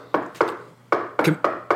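knocking

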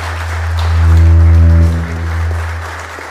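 applause from church audience

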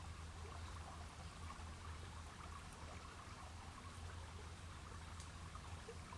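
flowing river water

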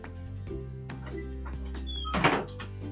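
door being closed

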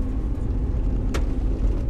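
pickup truck driving

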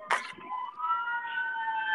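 ambulance siren passing

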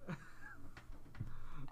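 person yawning

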